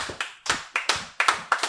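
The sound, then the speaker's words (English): Sharp hand claps repeat at a steady, deliberate pace, a slow clap of about seven crisp claps in under two seconds. They are fairly loud, with no talking over them. “And I think that's the movie that also started the slow clap.”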